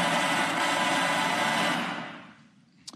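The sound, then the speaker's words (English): Construction noise interrupts a live Fox News broadcast during an interview with Senator Bernie Sanders: a loud, steady mechanical roar like a power tool or grinder runs for nearly two seconds, then winds down and fades, followed by a brief sharp click. “Are you trying to, like, air horn Bernie Sanders out with construction noises?”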